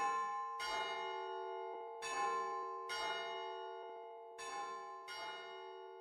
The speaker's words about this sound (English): They say that if you walk on a leatherwood top at night, you hear a church bell ring out.